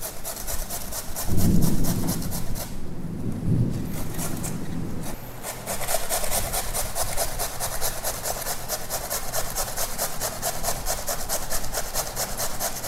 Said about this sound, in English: So let me go ahead and grate this potato. I'm just using a regular russet potato.